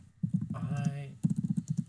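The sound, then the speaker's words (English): Rapid, uneven clicking of someone typing on a computer keyboard on the Sonic News Network, fandom powered by Wikia, in bursts at the start and again more crisply toward the end, with a brief voice sounding in between. “I'm sorry for the typing on the Sonic News Network, fandom powered by Wikia.”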